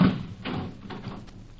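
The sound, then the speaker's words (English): A door being locked: a soft thud followed by a few short metallic clicks and rattles spread over a second or so, fairly quiet and with no voices. “Why did you lock that door?”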